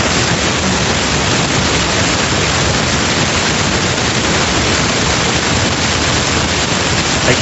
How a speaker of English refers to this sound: I'm getting a lot of static.